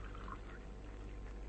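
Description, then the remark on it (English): Water pours steadily from a water bottle for someone to drink, a continuous splashing, gurgling stream for a second or two with no voices over it. “Here, drink this. Biggles left his water bottle by the bunk for you.”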